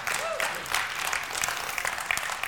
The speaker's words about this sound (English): Yeah, you can clap.